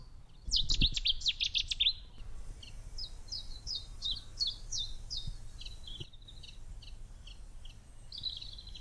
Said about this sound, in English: Probably should have talked a bit more, but I want to focus on the bird song.